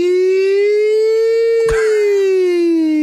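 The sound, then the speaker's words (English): A voice imitates a two-tone siren: a loud, buzzy, sustained wail whose pitch rises slowly, then sags toward the end, with a sharp click partway through. “Two tones, how are we going? Nino, Nino.”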